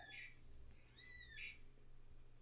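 Parrots screech back and forth: two harsh, shrill squawks about a second apart with a rising whistle-like call between them, over a steady low hum.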